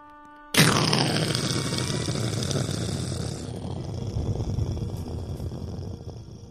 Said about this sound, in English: Was that thunder? Yes, that is correct. So you're telling me that it's raining right now outside.